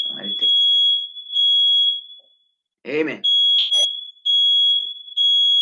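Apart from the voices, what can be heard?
alarm going off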